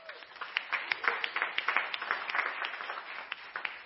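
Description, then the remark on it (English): A crowd applauds ministry leaders steadily, many hands clapping in a dense, crackling wash with sharper individual claps popping out at a moderate, even level throughout. “And I just want to give all of these ministry leaders a special round of applause for all the work that they do.”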